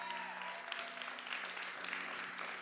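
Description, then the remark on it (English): A large crowd claps steadily and cheers to thank God and for their pastors, Levi and Jenny Lusco, a dense wash of applause with scattered shouts, sounding full throughout. “Clap and thank God for all that he's doing. And make some noise for your pastors if you love Pastor Levi and Jenny Lusco.”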